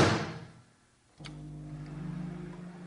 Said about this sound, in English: would you mind shutting the microwave door and turning it on for us?